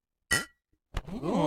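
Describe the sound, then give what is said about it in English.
Beer glasses clink together in a Christmas toast, a bright ringing tap that fades quickly, then a second sharper knock followed by a wavering, swirling tone. Fairly loud, with no talking. “So cheers to you, good cheers.”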